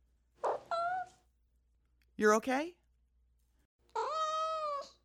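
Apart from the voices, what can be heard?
cat meowing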